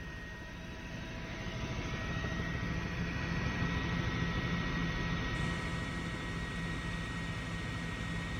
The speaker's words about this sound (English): A couple different videos, but just kind of showing you helicopter and neighboring business video footage. This is from the helicopter footage right here, folks. Check this out.